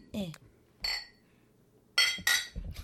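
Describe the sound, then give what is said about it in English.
Glasses clink together in a toast to a neighborhood bar: one bright ringing clink, then two quick ones close together, with brief murmured voices around them. “A clink. A clinkity clink to Borracho's.”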